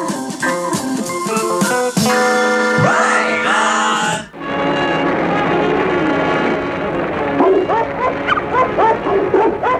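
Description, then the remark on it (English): Dogs bark, yip and whine in quick, pitched bursts on a novelty recording, singing their rendition of Jingle Bells, over a bright, sustained musical backing that grows fuller and busier partway through. “Listen for the dogs right at the beginning.”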